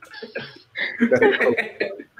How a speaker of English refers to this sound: A nice cough. There we go.